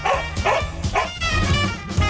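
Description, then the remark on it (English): A dog barks three times in quick succession, loud, followed by a longer whining, yelping tone with no talking. “we've got to put headphones on the dog. Okay. And if you can make Bo bark, you're going to win a prize”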